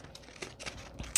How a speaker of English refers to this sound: Let me just do some trimming. Although torn would look cool too, but so tiny. Maybe I'm just gonna cut it. Okay, here I go. With my very, oh my God, these scissors are so small and they're so delicate.